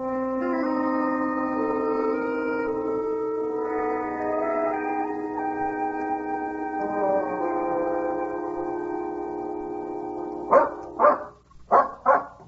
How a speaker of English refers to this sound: It can't be much longer. That dog is definitely leading us somewhere.